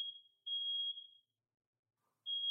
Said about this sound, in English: Sorry, the fire alarm's going off.